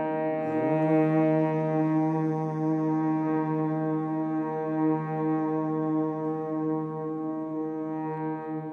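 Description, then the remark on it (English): A single sustained hum held steadily for about eight seconds, low-pitched with a rich buzzing tone from vibrating lips, constant loudness and no talking. The hum is made to find the note for chanting the mantra Om. “One more time on the hum. Feel your lips vibrating as you hum.”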